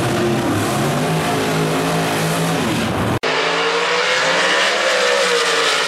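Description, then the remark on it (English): A drag racing car's engine roars and revs loudly and continuously as it is put in the water box to make a pass, its deep harmonic drone shifting pitch. After a brief cut midway it returns, dipping and climbing again. No one speaks. “Let's put this thing in the water box.”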